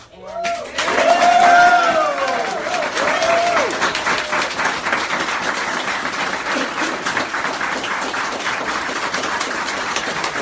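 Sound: crowd cheering and applauding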